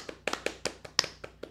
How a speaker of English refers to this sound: But Kike signed an extension. And obviously, we got to talk about that. Kike Hernandez will be back for the 2023 season. Yeah, we'll clap. Yeah.